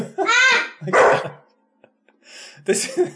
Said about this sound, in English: Now we got a dog barking.